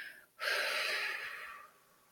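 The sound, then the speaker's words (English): A short, soft inhale through the nose, a brief pause, then a louder, breathy exhale through the mouth of about a second that gradually fades. Clear, with no talking. “Breathing in through our nose, a regular inhalation, and a long, slow exhalation out through our mouth.”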